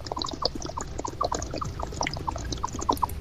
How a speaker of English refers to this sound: you sound like a water bong.